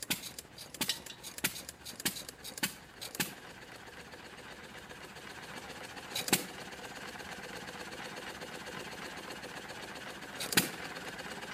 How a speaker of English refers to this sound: But once the flywheel is moving, the engine, it's really hard to stall that John Deere. Let me show you what that looks like. This is a horse and a half John Deere motor with the engine with the flywheel looking right at you.